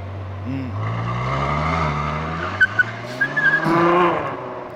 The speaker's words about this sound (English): Let me hear this thing. It's a beautiful sounding car.